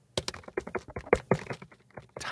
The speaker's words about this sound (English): Typing.